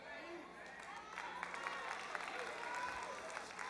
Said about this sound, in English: I don't know why she's clapping. She hates leftovers.